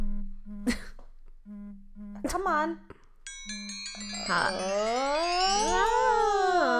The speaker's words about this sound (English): Oh! My phone's ringing. Listen to it. Oh, it sounds majestic. Listen.